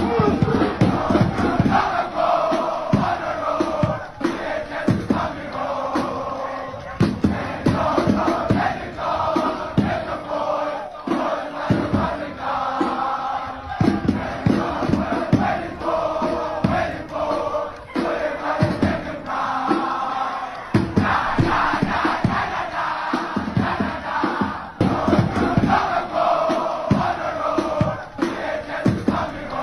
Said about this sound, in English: Who do you think in this context is going to be the kind of school, the kind of war cry that's going to get South Africa revved up for the week ahead?